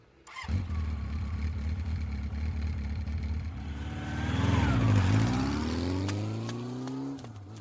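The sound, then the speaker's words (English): A small scooter engine sputters to life and idles, then revs up with rising pitch, dips, and climbs again as it pulls away, heading to Bryan Park, loud with no talking. “We'll take my scooter.”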